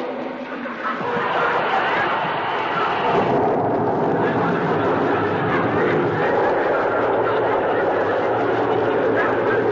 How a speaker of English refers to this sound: I just pour one tablespoon of this soothing syrup into this glass of water. Uh-huh. There. Now, listen to it. Fizz.